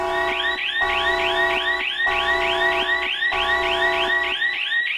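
warning siren sound effect

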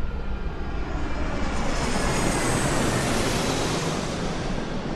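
airplane taking off

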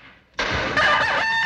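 rooster crowing

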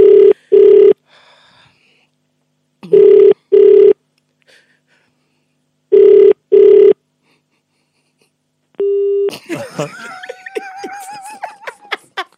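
telephone ringing

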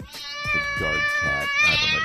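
cat meowing and yowling

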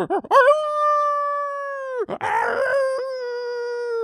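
wolf howling

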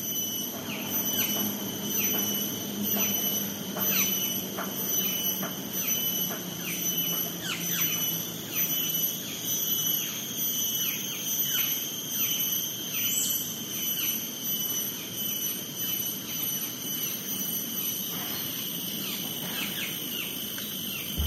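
cicadas buzzing

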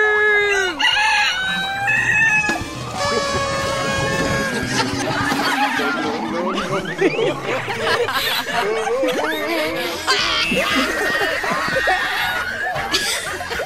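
rooster crowing

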